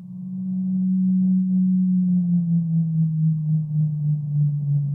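A deep, steady underwater moan from a Rice's whale, one continuous low tone that drifts slightly downward in pitch and holds without a break the whole time, with faint watery noise around it.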